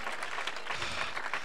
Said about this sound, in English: Come on, let's clap our hands unto the Lord in the name of Jesus.